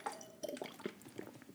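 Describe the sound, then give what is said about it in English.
The lid of a bike water bottle holding water is unscrewed, a quick run of small plastic clicks and scrapes with a faint watery slosh, quiet and without any talking. “Man, that's irritating, these bike bottles. Sorry, I just unscrewed the lid.”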